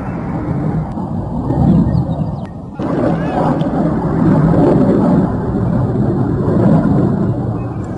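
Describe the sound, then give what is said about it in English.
Russian-made MiG-24 military jet planes roar overhead, approaching the skies around a rebel stronghold in western Kordofan, in a loud, sustained rumble that dips briefly partway through, then swells again and holds steady, filling the whole soundscape. “Let us now listen to the sound of MiG-24 Russian-made military planes approaching the skies around rebel stronghold in western Kordofan.”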